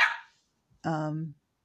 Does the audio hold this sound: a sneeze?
no